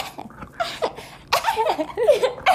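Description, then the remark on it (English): A few short, high-pitched little coughs, deliberately performed, then a brighter burst that breaks into giggly, laugh-like sounds, moderately loud with no speech. “Who coughs like that?”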